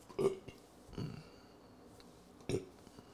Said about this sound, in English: Yep, that was two of them, back to back. I didn't do it in the microphone. You're welcome. Burp a lot.